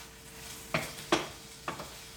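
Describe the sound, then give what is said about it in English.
Mexican chicken sizzles softly in a pan, a steady low hiss broken by three short scraping bursts from stirring. No one speaks. “All right, so this chicken is cooking pretty good.”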